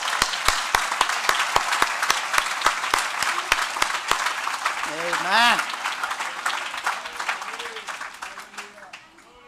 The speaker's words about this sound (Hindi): क्या हाँ अपने प्रभु के लिए ताली बजा सकते हैं?